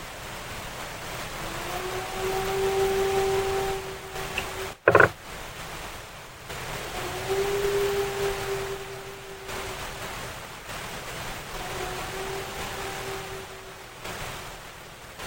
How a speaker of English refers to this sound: So we just played the howl. So tell me, I mean, and I told you before, that to me sounds like you were in Ohio. It captured the infamous Ohio howl.